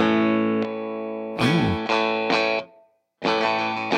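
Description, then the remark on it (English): An Ibanez electric guitar on its six-string neck, with both pickups on and tri-sound switches, plays a run of loud, distorted strummed chords that ring out, stops briefly, then hits one more sustained chord. No one speaks. “I'm on the six string neck. I've got both pickups on right now.”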